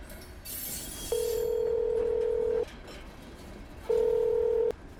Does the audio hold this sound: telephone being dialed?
yes